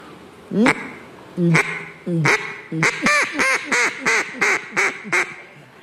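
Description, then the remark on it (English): A person imitates a duck with a string of loud, nasal quacks, three spaced out at first, then a quick run of about eight more in a steady rhythm. “But I can't talk because I'm a duck.”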